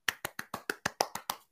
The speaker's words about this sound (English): And it's safe to say, I mean, you did a better clap than Jason Garrett, I might add, too.